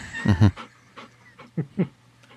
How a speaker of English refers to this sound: A very needy dog here tonight.